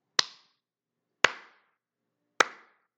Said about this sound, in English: That's my pity clap, because I pity the man, and I really feel bad for this country.